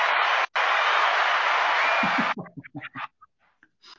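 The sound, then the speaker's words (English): Loud, dense applause roars for about two seconds with a brief break near the start, then cuts off abruptly as a man begins speaking. “Thank you for that raucous applause.”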